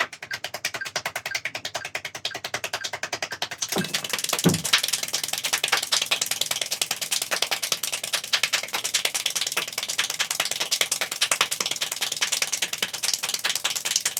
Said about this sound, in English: This kid is clapping his hands 19 times per second. This is what it sounds like.